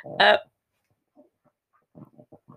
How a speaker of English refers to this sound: so there's no gaps so that nobody can hear that our dog is currently licking.